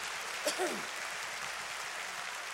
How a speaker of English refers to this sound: Come on, church, clap your hands and give praise to God.